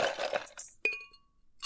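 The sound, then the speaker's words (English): Ice cubes clink and rattle into a mug, with a jumble of tumbling cubes first, then a couple of bright, ringing clinks that fade, fairly quiet, no talking. “I think it's time to ice the mugs up and get on out of here.”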